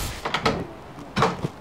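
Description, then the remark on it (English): A house's front door is opened: two short clusters of clattering latch-and-handle knocks, moderately loud, separated by a brief pause, with no talking. “He's about to open the door of his house and he's going to walk out and show me where his meter is.”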